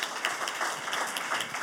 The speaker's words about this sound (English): Please, ladies and gentlemen, a round of applause for our panel. Yeah. Wait, keep those hands clapping, please, for our technicians,